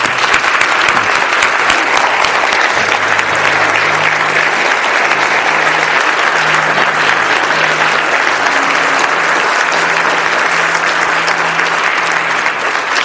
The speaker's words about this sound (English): I want to give you the chance right now, just through verbally, through your applause or whatever, just to affirm these men, thank them for what they're doing, and let them know that we support them in this process. Would you do that with me, please?